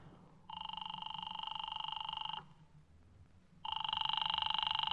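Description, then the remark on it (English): A telephone ringback tone purrs in two long bursts, each about two seconds, separated by a pause, steady, with faint low background hum and no voices. “do you mind if I use your phone?”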